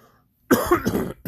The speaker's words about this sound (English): Excuse my coughing.